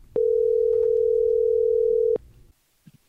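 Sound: telephone dial tone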